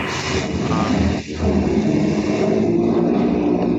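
A truck rolls past with a steady, loud roar of engine and road noise that barely wavers, dipping for a moment early on before the rumble carries on. No one speaks.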